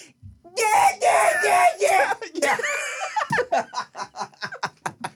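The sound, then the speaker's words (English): A loud, strained voice belts out a melody in a raspy scream-singing style for a few seconds, then breaks into a quick run of rhythmic, laugh-like bursts. “Are you not just supposed to scream sing when you do karaoke?”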